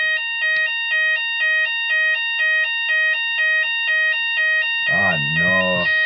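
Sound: fire alarm ringing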